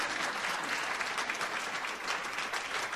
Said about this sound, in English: There is much work that needs to be done, but through Governor Tony Evers, our new governor, Healthy Women, Healthy Families, Healthy Babies Initiative invests a groundbreaking $28 million. Yes, that's a reason to clap.